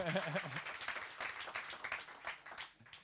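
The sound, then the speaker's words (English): An audience at a talk event gives a round of applause for the event's organizers, clapping steadily for about three seconds in a dense wash of many hands at once, with a brief voice audible at the very start. “Yeah, round of applause.”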